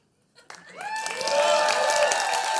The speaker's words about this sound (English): There was a huge applause here if you couldn't hear it on the video here.